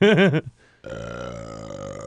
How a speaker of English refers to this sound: I want to point out that the first 5.5 minutes of this podcast has mostly been you burping and making noise.